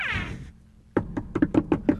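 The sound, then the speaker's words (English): Police officers knock on a door in a rapid run of about eight sharp knocks, evenly spaced and fairly loud, following a short high voice-like sound and a brief pause of near silence. “These are very patient cops, so we're going to take off, and they'll probably knock again.”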